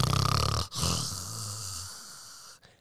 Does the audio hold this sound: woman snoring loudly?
yes